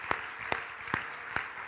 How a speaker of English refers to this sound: One more time, clap your hands as loud as you can unto the Lord. Come on, clap Him, clap Him, clap Him like you feel good to be in church.